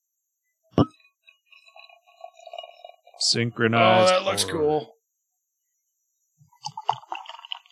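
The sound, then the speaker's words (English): A sharp clink, then creamy beer glugs and fizzes steadily from a can into a glass in front of a microphone for a couple of seconds before people talk over it; soft bubbling returns at the end. “Mine's behaving, but I'm going to go ahead and pour it. All right. In front of the mic.”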